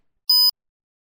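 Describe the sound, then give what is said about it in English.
A single short electronic beep in a language lesson, signalling the learner to repeat after it, clear and steady, lasting about a fifth of a second, with silence before and after it. “Your task is to repeat after the beep.”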